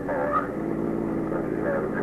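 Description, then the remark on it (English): A police patrol car drives on patrol of a precinct with a steady, continuous engine drone at moderate loudness, with faint muffled voices layered over the hum. “Sector Car Number 3 came by the station house for me, and I went on patrol of the precinct”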